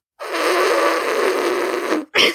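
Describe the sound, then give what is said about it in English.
A voice makes a sustained, buzzing raspberry noise with the mouth for about two seconds, imitating a laugh that sounds like a fart, then a short breathy burst follows. Fairly loud, with no talking. “Really? Like that? That's your fart laugh?”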